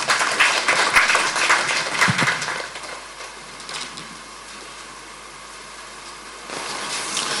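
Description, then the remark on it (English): An audience at the inaugural Joy News Impact Makers Awards applauds the General Manager of the Joy Brands coming up to give opening remarks, with dense, crisp clapping that is loudest at first, thins to a softer patter midway, then swells slightly again toward the end. No one speaks. “A round of applause to him.”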